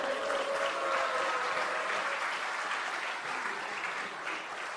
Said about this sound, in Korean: 불안에 떨고 있는 저한테 박수 한번 보내주십시오.